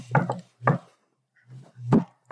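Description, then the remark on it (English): A rhythmic secret knock on a wooden door: a quick pair, a single knock, then a pause before a few heavier, thudding blows, the last two struck with an elbow and then a fist. Loud; no one speaks. “And the thing is that I punctuate it by I hit the last two with my elbow and then my fist.”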